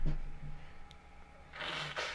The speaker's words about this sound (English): You good? Yes, I just needed to blow my nose.